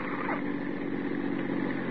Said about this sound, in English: That's a heavy car passing.